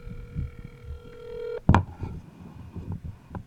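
A steady electronic telephone dialing tone from a phone placing a call holds for about a second and a half, then cuts off with a loud clunk as the phone is put in a bowl, followed by scraping and handling clatter.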